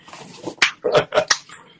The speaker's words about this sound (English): I like them claps. I like them claps. Let's give them some claps, y'all.